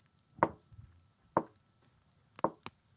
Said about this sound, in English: Just slow, creepy, deliberate knocking.